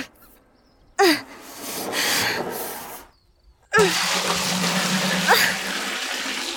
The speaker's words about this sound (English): Oh, what do I do? The hole in this clay jar is just too large and the water keeps coming out.